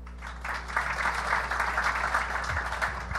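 An audience at the Kill Tony comedy show claps in a dense, steady burst of applause lasting a few seconds, a continuous crackle of many hands with a low hum underneath.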